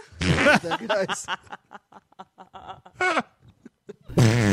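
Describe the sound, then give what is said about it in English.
A voice makes blown, sputtering fart noises: a loud buzzy burst, then a string of short wet pops, and a final heavy rasp, with snickering laughter mixed in. “Too much air coming out of my dick hole. A cock queef, is that what you're saying”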